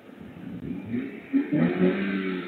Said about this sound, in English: That's you getting into the car, right? And you closing the door. And that's you speeding up and screeching, burning rubber.